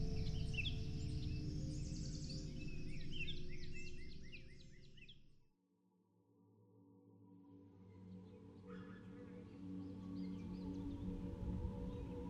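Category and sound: bird, birds chirping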